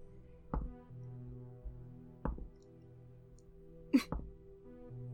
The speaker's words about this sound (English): Oh no, I hear the thumps of the dice. There were so many dice rolls.